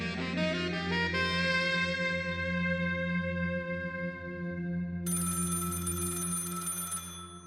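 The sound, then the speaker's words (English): Mickey's home telephone rings loudly with bright, sustained electronic tones that shift partway through into a harsher, buzzier burst of ringing before fading. No one speaks. “Mickey's phone rings.”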